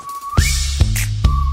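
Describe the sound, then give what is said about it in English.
A clear whistled melody glides upward and holds, repeating over a song backing with heavy booming bass hits that land roughly every half second. “Make a whistle like a missile, boom, boom.”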